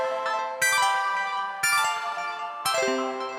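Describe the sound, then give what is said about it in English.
A chime rings out three times, about a second apart, each bright, bell-like strike sustaining and overlapping the next with shimmering high overtones. No one speaks. “Do we need to play a chime?”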